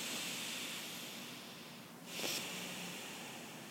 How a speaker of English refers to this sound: A slow, deep breath in through the nose and out through the nose.